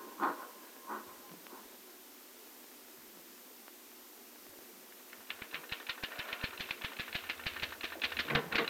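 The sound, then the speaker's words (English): After a quiet, hissy stretch with a few faint tones, a typewriter starts clattering in fast, steady keystrokes that continue to the end, fairly loud, with no one speaking. “Say, you can really make that typewriter talk, can't you?”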